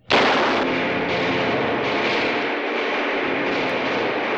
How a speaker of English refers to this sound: That's just guns echoing through the maze of the earth.